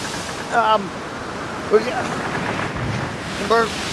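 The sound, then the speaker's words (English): Ocean water sloshes and churns steadily into a dinghy with a hole in it, blended with gusty wind noise, while a voice breaks in with three short, strained vocal sounds. “There's a hole in the dinghy. Eliza. Yes, right. I am taking on a considerable amount of water.”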